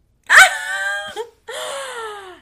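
A dog barks twice, loud, each call drawn out into a howling, wailing tone that slides downward, with a short pause between them and no one talking.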